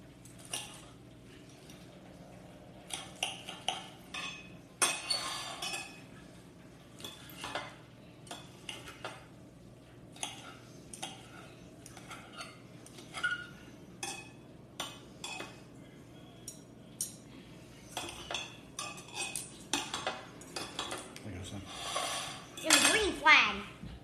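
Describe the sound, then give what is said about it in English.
Cutlery scrapes and clinks against a plate in short, irregular bursts while food is cut up, over a steady low background hum, with a louder clatter near the end. “Yep, let me cut this stuff up first.”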